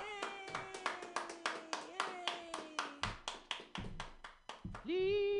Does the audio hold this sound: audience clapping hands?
yes